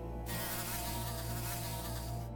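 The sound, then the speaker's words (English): A gadfly's steady, loud buzz drones without a break as it stings furiously, its low hum layered with a rasping, high-pitched whine that swells and wavers slightly. No one speaks. “However, the gadfly was also pleased by the decrease in altitude. As it came awake, it resumed its furious stinging.”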